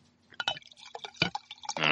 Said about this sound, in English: The pint of champagne in front of me would definitely beg to differ. Yeah. Well, let's hear some pouring. Okay, here you go.